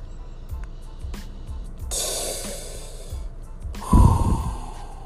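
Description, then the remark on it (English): A bong hit of the Space Candy cannabis strain: a steady low bubbling gurgle pulses under a long, airy inhalation, ending in a sudden louder rush of breath and water. No one speaks. “I'm going to take a quick rip”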